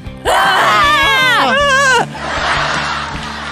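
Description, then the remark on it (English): Loud, wavering screams from more than one voice fill nearly two seconds in two close bursts, then cut off abruptly, leaving a softer murmur of background noise. “Dude, why are we screaming?”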